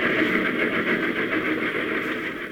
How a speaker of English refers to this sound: Suddenly, I realized that I was hanging on the side of a speeding train. Fearfully, I climbed the iron ladder, my shoes scraping on the car and the wind tearing at my hair.